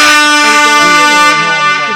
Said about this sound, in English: I want to give you an air horn first and foremost. Let me do that first and foremost. Give you a motherfucking air horn.